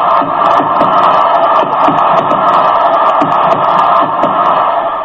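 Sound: stadium crowd cheering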